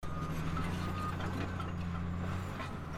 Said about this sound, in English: Up on the slopes of the Upper Copeland Fan Restoration Project, a massive Caterpillar D9 earth mover works to recreate in months what took nature centuries.